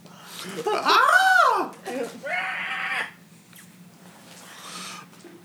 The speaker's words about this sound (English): I can hear our Wilhelm scream.